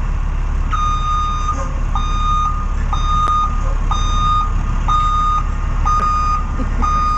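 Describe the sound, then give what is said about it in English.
A sound effect of the WAAF summer tour bus backing up: a steady series of loud reversing beeps repeats at an even pace, about one per second, over a constant low engine rumble from the large vehicle. “And so I had Stiz Grimey get a sound effect for the tour bus.”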